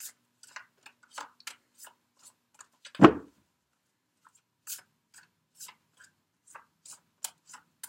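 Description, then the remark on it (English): Crisp, scattered papery flicks and riffles with one heavier, fuller thump partway through, as decks of oracle and tarot cards, including the Tarot of Sexual Magic, are shuffled for a card reading. “I have already shuffled all the decks, Capricorn, but I'm just going to shuffle a little bit more as I tune into the energies for you during this time period.”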